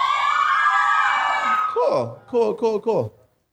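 A single audience member answers the speaker's question of whether any readers are present with an unusual cheer: a long, shrill sustained yell followed by four short, loud yelps that each slide downward in pitch, then silence.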